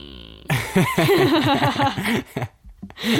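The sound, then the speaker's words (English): A voice imitates retching and barfing with a run of loud, gurgling, warbling mouth noises, wavering in pitch over about two seconds, then a brief pause and one more gagging burst. “He's like pretending to barf. Not pretending. I'm not pretending. Man, I'm actually we need barfing.”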